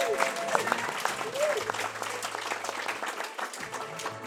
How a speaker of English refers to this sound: Thank you for coming to Leicester to see us. Yes, give yourselves a round of applause before you go any further.